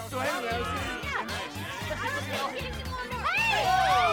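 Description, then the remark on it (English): Loud crowd chatter at an outdoor fundraising party on a front lawn in August 1989, many overlapping voices of island locals talking at once with bursts of laughter, a dense, steady hubbub of a lively gathering. “And it did get very, very loud. The crowd was solidly island stock.”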